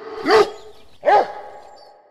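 Two loud barks about a second apart from Dev, a show champion beagle now working as a stud dog, each a sharp harmonic yelp with a rising-falling tone, followed by a quiet tail of background noise.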